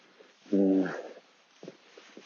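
A dog among nettles lets out one short, high, whining whimper, loud, lasting about half a second, followed by faint outdoor rustling and quiet ambience.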